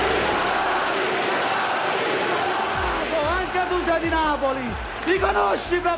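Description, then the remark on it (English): A loud, dense crowd roar of overlapping shouting voices during a brawl among politicians on the Italian parliament floor, with MPs yelling "Thieves!" amid punches and grabbing; individual yells and cries rise and fall sharply above the din as the commotion grows more frantic toward the end. “On the parliament floor, there are punches being thrown, people being grabbed.”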